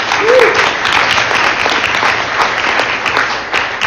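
Steady, loud applause from an audience, a dense wash of many hands clapping that holds evenly for several seconds, with a brief whoop or cheer near the start.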